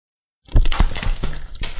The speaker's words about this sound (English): Okay, shuffle the cards.